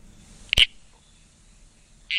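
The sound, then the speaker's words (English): Two short, loud calls of a red-crowned toadlet, a brood frog (Pseudophryne) from New South Wales, one near the start and another cut off at the end, each a sharp squelchy burst separated by a quiet pause over faint background noise. “That's Pseudophrenia, one of the brood frogs.”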